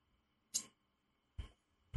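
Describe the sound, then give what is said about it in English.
Three quiet tongue tsks, each a brief sharp click, spaced unevenly over a couple of seconds with near silence between them and no talking. “He's like tisking like a fucking cat.”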